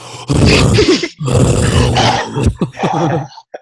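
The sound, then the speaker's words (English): A voice imitates heavy, rasping breathing with loud grunting, groaning bursts in a few strained pulses, ending in short choppy huffs. “Yeah, I had to school him on cutting down the air. I know you did. The breathing.”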